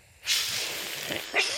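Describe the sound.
Stuart, a character in Letterkenny, hisses at Anita like an angry cat, a sustained breathy hiss starting abruptly and lasting over a second, rising in intensity at the end, fairly loud with no talking.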